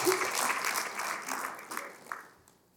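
An audience bursts into dense, steady applause for the Lord, a broad wash of many hands clapping that holds strong and then fades out over the final half second.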